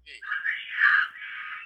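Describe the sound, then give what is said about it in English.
A person in a recording screams in one long, shrill, unbroken wail lasting under two seconds, swelling loudest in the middle before holding steady at a strained high pitch. “And you can hear someone like screaming bloody fucking murder.”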